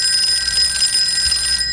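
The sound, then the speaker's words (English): A telephone rings at a technical support desk with a bright, continuous metallic bell tone, steady and fairly loud for the whole short moment, with no voices. “Ring, ring. No, come on. Ring, ring.”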